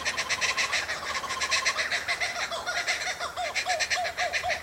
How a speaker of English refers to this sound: And the funny sounds that kookaburras make.